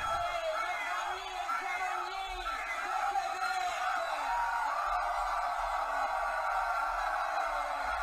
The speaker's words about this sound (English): My goodness, my Lord, this is fantastic news, y'all. Can you hear the difference when people are screaming, when they're shouting? It's like the walls of Jericho.